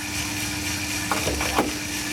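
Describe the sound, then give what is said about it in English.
A 2-kilo Coffee Tech coffee roaster running with a steady, noisy mechanical roar and a low hum, the dryer being pulled in and out, broken by a few soft, brief pops near the end. “This next recording is from a 2 kilo coffee tech roaster. It's a bit more noisy.”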